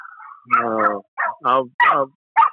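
Several dogs bark and yip in quick succession, a long whining yelp followed by four short, sharp barks with brief pauses between, loud.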